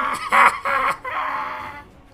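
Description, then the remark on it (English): A voice imitates a woman screaming in pain after losing her hand: a few strained, wailing bursts that swell and break over about two seconds, then trail off into a long, ragged cry. “She's still screaming for a while. I'm not going to do that. This is going to kill my throat.”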